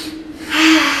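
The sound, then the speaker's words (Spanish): A single deep breath, a soft airy rush that swells in the second half and holds steady, over a faint low hum, with no talking. “Escúchame, yo ahorita estoy respirando”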